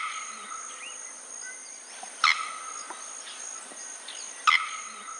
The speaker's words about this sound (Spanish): Pero este piar acompasado es solo uno de sus cantos. El campanero herrero es conocido por un chasquido agudo que sorprende por lo fuerte.